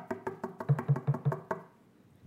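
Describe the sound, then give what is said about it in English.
A quick run of about nine sharp, evenly spaced knocks on a hard granite surface, each a dry crack with a short ring, then the rapping stops and fades to quiet. “I think that's granite.”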